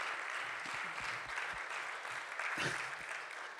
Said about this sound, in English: Brian's very grateful that you guys clap for him.